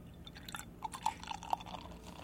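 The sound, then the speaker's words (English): Beer, a Belgian triple from Brewery Nomagang, pouring straight down the middle into an untilted glass, a soft fizzing hiss broken by irregular gurgles and small bubbly pops, fairly quiet, with no one speaking. “And we'll pour a little bit here.”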